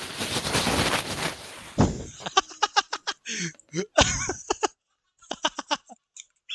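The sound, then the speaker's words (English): A plastic bag being moved rustles in a steady, loud hiss of crinkling for a couple of seconds, then breaks into a string of sharp, irregular crackles and crinkles with brief pauses between them. “Alright, I gotta move a plastic bag, so I apologize if you hear any plastic bag noises.”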